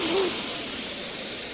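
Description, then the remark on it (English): A steady, airy hiss of someone drawing a long, deep breath in through the nose, fairly loud and unbroken for over a second with no talking. “Let's take a deep breath together right now. Like, through your nose.”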